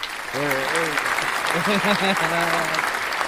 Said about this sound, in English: I have applause somewhere. Hold on.